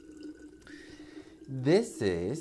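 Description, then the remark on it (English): Water trickles softly into a cup, a faint pour with a light hiss, then a voice starts talking over it. “And instead of that, I made some coffee, and I'm pouring myself some water.”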